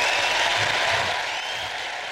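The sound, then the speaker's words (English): A steady round of applause from a group for a guest, a dense wash of clapping at a fairly loud, even level that tapers slightly toward the end, with no voices. “And ladies and gentlemen, my team out there, please give a big round of applause once again to my guest”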